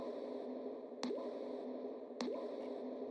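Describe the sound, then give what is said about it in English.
A voice imitates gulping water: two wet, popping clicks about a second apart, each followed by a short rising bloop, over a steady background hiss. “Anyways, this is my noise for when I'm drinking water.”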